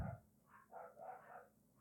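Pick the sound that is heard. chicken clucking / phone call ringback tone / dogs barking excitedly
dogs barking excitedly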